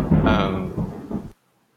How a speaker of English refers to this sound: I just heard that thunder. Yeah, sorry.